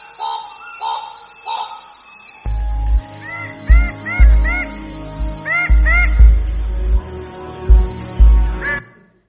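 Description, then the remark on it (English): A bird of paradise in Papua New Guinea gives loud, harsh cawing calls, repeated in quick pairs and short bursts, over a steady low background hum. “And you can see the bird of paradise there. There's 42 different... That's the noise he makes.”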